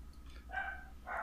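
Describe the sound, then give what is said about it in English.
A small dog gives a couple of short, high-pitched yappy barks, the second one sharper and louder, with no talking around them. “You turned into a tiny dog.”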